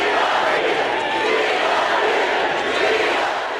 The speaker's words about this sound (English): An enthusiastic crowd chanted, "We love you, stop the steal, 4 more years," as Trump spent most of his time airing grievances and falsehoods about the presidential race.